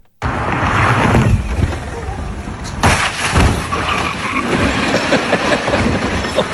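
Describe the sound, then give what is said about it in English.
A loud, continuous roar of a Tesla electric car driving and launching airborne over a hill, broken almost halfway through by a sudden heavy crash as it lands into a dumpster and a parked car, then rough, noisy rumbling and clattering that carries on loud to the end. “Well, this must be the place because these guys took a Tesla and launched it over this hill. Just listen to the audio.”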